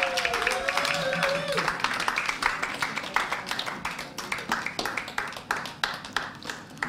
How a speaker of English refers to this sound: So let's give them a hand. Let's call them forward. Keep clapping. Gotta keep clapping.